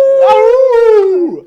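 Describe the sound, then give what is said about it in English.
A single loud, drawn-out howl, holding a steady pitch that rises slightly and then sags as it fades out after just over a second. “I don't get the howling though.”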